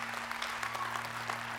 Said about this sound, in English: Yeah, you can cheer for that. That's good.